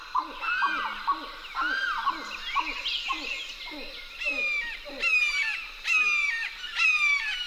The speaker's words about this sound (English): Lang Elliott and Ted Mack went to the Wakissa River's edge and recorded chattering grebes, a limpkin, and the harsh call of a red-shouldered hawk.